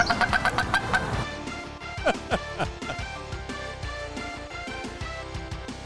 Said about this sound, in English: Yeah, this goes on for 4 minutes. I figured just like background music this here. Yeah. That is also a Stellar Sea Eagle.